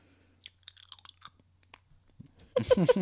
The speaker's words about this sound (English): Sorry if you all just heard me tonguing my cough drop.